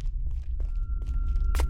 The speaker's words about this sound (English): He pressed the thin metal door open and stepped into the diner.